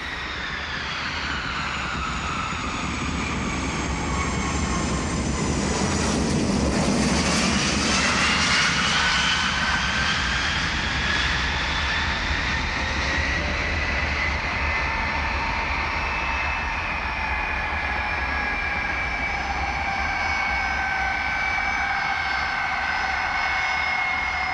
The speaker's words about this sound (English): when the plane landed at John F. Kennedy Airport and taxied over to where you got off the plane